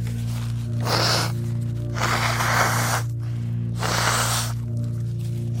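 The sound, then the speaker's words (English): Someone blows their nose into a napkin three times, each a loud, breathy honk lasting under a second, over a steady low electrical hum with no talking. “I'm just gonna blow my nose real quick, okay?”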